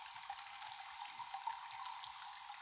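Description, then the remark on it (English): Steady, soft rush of an ice cold flowing stream, a continuous gentle babble with faint trickles and small splashes, heard alone with no voices. “You take a seat on a boulder beside the stream, occasionally sipping from your canteen and listening to the peaceful flow of the water.”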